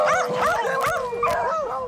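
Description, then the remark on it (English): A chorus of beagles barks and howls together, loud, their wavering, overlapping cries running continuously with no pauses and no one speaking. “Still ahead, helping beagles find a home one dog at a time.”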